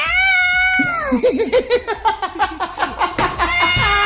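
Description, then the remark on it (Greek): A cat yowls loudly: a long, drawn-out wail that bends downward, then a rapid run of choppy, warbling cries, ending on another sustained yowl. “Φίλε, γιατί βάζεις το γατί μέσα.”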